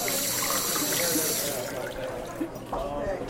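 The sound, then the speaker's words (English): Water runs steadily for about a second and a half with a bright hiss, then gives way to softer splashing and a few clinks as it is poured into a glass for a mayor at a village celebration in Riverside-Albert, with faint voices in the background. “Mayor Jim is about to make an announcement, but first, he needs a glass of water.”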